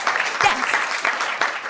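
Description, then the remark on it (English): An audience claps steadily to vote by clapometer, a dense wash of many hands, with a few cheers and whoops rising briefly over the applause. “using that time-honoured method, the clapometer, cutting-edge technology, your hands and our ears. So you're definitely going to have to cheer exactly like that last time.”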